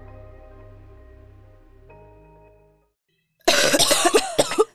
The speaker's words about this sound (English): Do you constantly find yourself sounding like you are coughing up a lung?